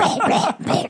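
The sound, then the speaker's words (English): A female dog eats noisily, making wet, gulping, smacking sounds in two loud bursts separated by a brief pause. “Because my dog makes really disgusting noises when she eats.”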